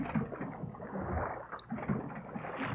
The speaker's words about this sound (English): So hear the water. It almost sounds like a thunderstorm. Mm-hmm. It's almost like you're on a boat.